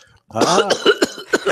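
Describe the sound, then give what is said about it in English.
A loud fit of coughing caused by tobacco dust from a cold draw on a Davidoff cigar: a strained, voiced hack followed by several quick, harsh coughs in an uneven rhythm, with no talking. “Is it from drawing in the tobacco? Yeah, it's the dust. Coughing?”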